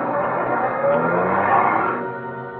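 A car engine revs and accelerates as a car that had been waiting by a road pulls away, a loud, steady motor drone that rises in pitch and then eases off toward the end. No one speaks.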